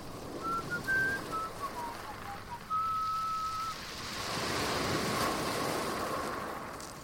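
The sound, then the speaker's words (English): Steady rushing seaside waves and wind on the beach at sunny Brighton, the wash swelling louder in the second half, with thin, high whistling tones drifting over it in the first few seconds. No one speaks. “The seaside.”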